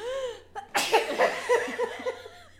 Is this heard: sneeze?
yes